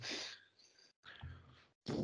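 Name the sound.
voice imitating snoring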